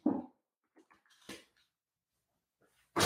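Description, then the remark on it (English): A dog shuffles and moves about, with scattered scratching and rustling noises, a short whimper-like sound, and a louder burst of noise at the start and end. “While you go over there, I'm just going to go get the dog.”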